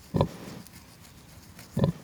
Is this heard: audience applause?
no